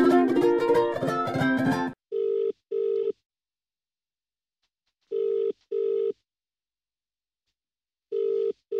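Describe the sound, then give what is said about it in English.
A quick flurry of telephone dialing tones, then the line rings with a repeating double-ring pattern: two short burrs, a pause of a few seconds, then two more. No voices are heard. “We can't phone him in here, can we? No. Should we go through to the phone room?”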